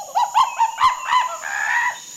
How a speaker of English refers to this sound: I'm in a place with big trees. There are plants everywhere, and vines are hanging down from the trees. It's really hot and sticky here. I can hear birds all around me, and I think there's a monkey up there, too.